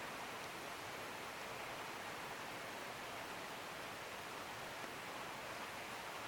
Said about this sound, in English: Allowing the gentle rain to hold your attention spaciously.